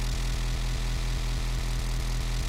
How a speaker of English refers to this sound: This is just I'm just using this sine wave as a modulator, and I am modulating the filter cutoff. So I'm doing, this is basically filter FM.